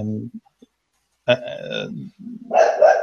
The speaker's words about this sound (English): There's my neighbor's dog.